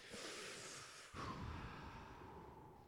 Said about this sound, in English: Wait, I'm breathing. No, stop. Please, I'm, please stop. Please, I just want to breathe. This isn't ASMR. This is just me fucking breathing.